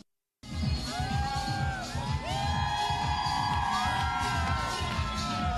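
A large crowd cheers and shouts loudly and continuously at the New York City Pride march, with whistles and high whoops rising above a dense, steady roar after a brief silence.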